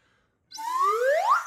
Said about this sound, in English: The slide whistle goes up, too. Oh, yeah, what do I do when the slide whistle goes up?